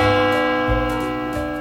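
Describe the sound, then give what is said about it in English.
A school bell rings loudly and steadily, a sustained metallic tone holding for the whole moment with a couple of low pulses, and no voices over it. “Oh, Skechers, the bell.”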